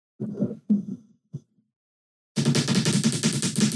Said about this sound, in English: I'll set it like this and I'll just type like this. Yeah. Like really quickly, like just rapid fire.